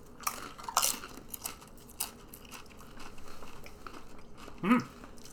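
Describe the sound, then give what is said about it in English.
Crisp crunching of tortilla chips dipped in guacamole being bitten and chewed, with a few sharp bursts of crackle at the start and a louder crunch near the end, no talking over it. “So we're going to start with the guac, and we are 100% going to cheers our chips.”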